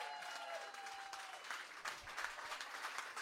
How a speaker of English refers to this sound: How about a round of applause for all the artists and everybody who bid?